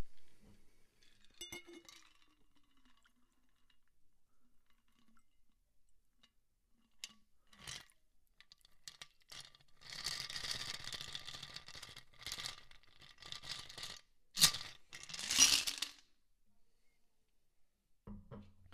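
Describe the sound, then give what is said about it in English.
A dark amber cocktail is poured into a glass that was sprayed with absinthe, in a couple of short splashing bursts, with light glassy clinks and handling noises around it. “And now we're going to pour the cocktail.”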